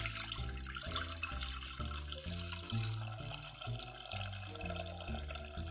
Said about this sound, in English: I'm going to add my broth to my pot.